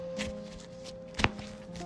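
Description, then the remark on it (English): A deck of cards being shuffled quietly before drawing an opening hand in a card game: a few soft, scattered taps and rustles, then one sharper snap near the end, over a low steady hum with no talking. “Alrighty, I've got a shuffle here.”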